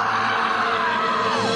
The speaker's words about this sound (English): At the sound of the shriek.